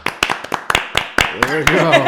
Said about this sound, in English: Yeah, no, it sounded like a lot of people were clapping.